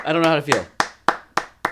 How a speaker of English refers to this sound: I'll take the applause. That's huge.